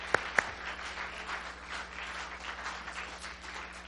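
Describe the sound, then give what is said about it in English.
An audience claps for joy together in a steady, dense wash of applause, opening with a couple of sharp, distinct claps before blending into a continuous patter that stays moderately soft and never stops. “Come on, clap for joy.”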